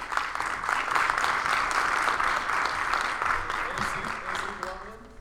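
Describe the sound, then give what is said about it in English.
A crowd applauds a candidate representing Zone 7 as he is introduced, a dense wash of many hands clapping at full strength for about five seconds, easing slightly near the end as a few voices rise beneath it. “Clap it up for him.”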